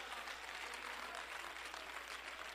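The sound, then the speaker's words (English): An audience claps their hands in a steady, dense wash of applause that holds at an even level throughout, with no voices standing out. “If you believe that, you ought to clap your hands and praise the Lord.”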